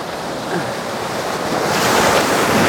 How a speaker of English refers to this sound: Oh, I like just moved my camera and the water was like shh. I think there's a set coming through at the moment.